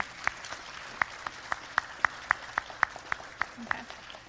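An audience applauds with steady, evenly paced claps, about a dozen crisp strikes, over a faint murmur, applauding a child being dedicated at church.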